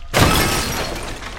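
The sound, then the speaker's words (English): A table with a cake on it is kicked over with a sudden loud crash, followed by a second or so of noisy clattering and breaking debris as the cake's layers crash and slide apart, with no voices. “The second the Marilyn were gone, Isaiah kicked over the table.”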